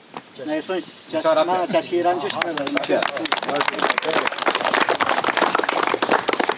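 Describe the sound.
Several voices talk together at first, then a group of people breaks into steady clapping: many quick, overlapping claps, loud and sustained to the end.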